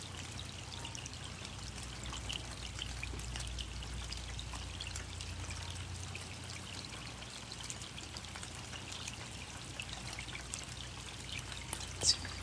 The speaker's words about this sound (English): It's finally raining. Ah, sweet, sweet rain that we so need.